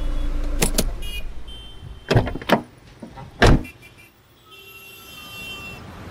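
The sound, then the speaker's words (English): A car coming off the freeway settles into a spot in the DAC club's parking garage: a low engine rumble, a series of sharp thumps and clunks, then a steady electric whir like a power window closing. “Safely off the freeway, it's time to park.”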